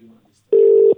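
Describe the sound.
A single steady electronic ringing tone from a phone call sounds loudly for about half a second, following a brief murmur of faint voice at the start.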